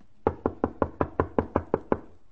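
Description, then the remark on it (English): About ten quick, evenly spaced, firm knocks rap on the door of Apartment 2C, in a steady rhythm with no voices, then stop. “Knock again.”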